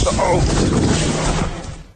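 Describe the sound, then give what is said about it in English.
A Belkin 4000 portable charger, on fire in a room in the middle of the night, exploding: a loud, continuous burst of harsh roaring hiss and crackle that holds steady for over a second, then quickly tapers away. “That explosion is real deal.”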